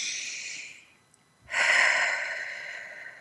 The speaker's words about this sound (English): Keep that deep breathing.